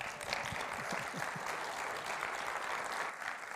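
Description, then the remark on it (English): An audience applauds in a steady, dense round of clapping that holds at an even, fairly loud level throughout, with a few faint voices mixed in. “Let's give a round of applause, hey?”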